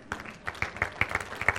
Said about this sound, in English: That clap's like, oh, do I have to give?